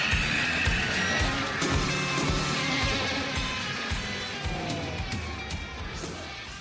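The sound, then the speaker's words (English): A sausage patty sizzles in a steady, dense crackling hiss that holds at an even, fairly loud level for several seconds, with faint higher tones drifting through the noise. “Is that America cheering or a sausage patty sizzling to perfection?”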